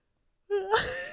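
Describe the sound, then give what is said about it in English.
After a short silence, a tired person gives a single drawn-out yawn: a low voiced groan that rises and opens into a breathy exhale, with no talking. “I can't stop yawning.”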